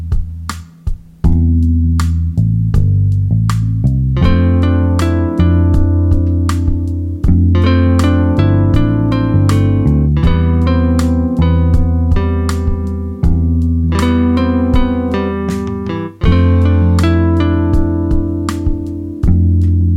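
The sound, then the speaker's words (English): A steady, punchy chill hop beat with sharp regular hits plays throughout; halfway through, an added guitar line joins, layering bright plucked notes over the loud rhythm with no one talking. “All right, so I added the guitar. I really like how that sounds, but I think I'm going to add some echo because chill hop kind of has this like dreamy, swirly kind of vibe sometimes.”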